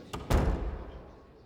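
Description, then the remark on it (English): An attendant opens a grand set of heavy doors: a quick latch click followed by a deep, booming thud that echoes and slowly fades. “Inside, a series of corridors lead him to a grand set of doors. An attendant opens them, and he enters a room filled with smartly dressed men, all looking as austere as the occasion requires.”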